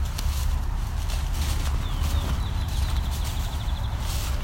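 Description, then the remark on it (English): A red-winged blackbird gives a thin, rapid trill of repeated notes lasting about two seconds over steady low rumbling and clopping, hoof-like footsteps. “Red-winged blackbird here.”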